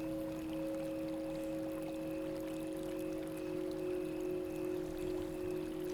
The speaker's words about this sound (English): You can hear the gentle sounds of the water slowly lapping the shore.